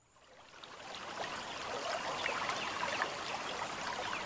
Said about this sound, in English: The slow, choppy waters erratically splash up against the obstruction, an offbeat rhythm banging into an island of rusted steel. As the Ohio River flows towards the Mississippi, its waters make their way through the American Midwest.